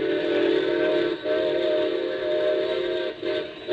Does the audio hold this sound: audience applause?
no